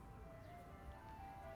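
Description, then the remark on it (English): A faint, tinny ice cream truck jingle plays, its thin melody drifting steadily over a low rumble of background noise. “Oh my god, an ice cream truck!”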